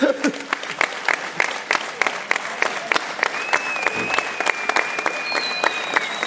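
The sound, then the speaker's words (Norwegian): An audience claps steadily, dense overlapping handclaps, with a faint whistle-like tone drifting above the applause partway through. “Vi skal alle sammen fortsette litt på applausen,”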